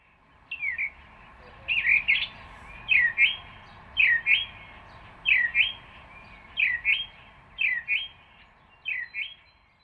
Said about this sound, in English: this is a house sparrow. Can you all say a house sparrow? A bird!